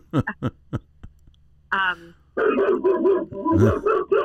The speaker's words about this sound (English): Let me guess. Someone's walking by your house? Well, I would guess probably yes, that there's another dog barking next door, so she's, you know, responding to their calls.